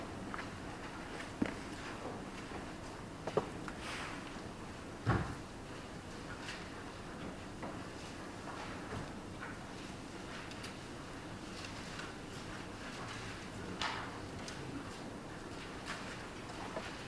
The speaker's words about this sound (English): Sound of Bible pages turning is nearly as good as the sound of rain on the roof, which means it's pretty good. It's wonderful.